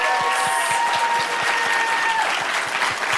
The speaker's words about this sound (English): So let's have a big round of applause for all of our incredible new voices.